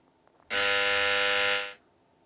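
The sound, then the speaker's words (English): A single loud, harsh electronic buzzer blares steadily for just over a second, a flat rasping game-show tone that starts abruptly and cuts off cleanly, with no talking. “Buzzer.”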